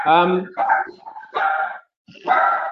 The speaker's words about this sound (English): there's a dog in the background as well.